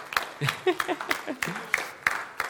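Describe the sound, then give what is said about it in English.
A church audience applauds their new admin assistant as she is called up before the sermon, scattered, fairly loud claps in an uneven rhythm, while voices murmur underneath throughout. “We can clap for her there.”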